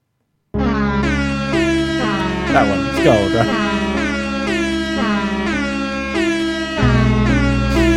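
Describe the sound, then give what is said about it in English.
Loud, brassy air horn blasts repeat over a pounding bass-heavy music track, filling the whole stretch, with a brief spoken remark slipped in near the start. “And don't you have one that's like air horn on top of music?”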